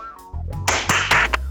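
A burst of applause from someone on a screen begins partway through, with sharp, loud claps standing out over a dense wash of clapping and a steady low hum underneath.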